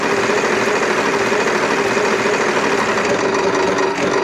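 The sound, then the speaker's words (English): A prize wheel spins to decide where to go next, with a rapid, dense run of clicks that blur into a steady mechanical rattle, holding an even loudness for several seconds with no voices. “I'm going to spin the wheel to decide where we're going to go next.”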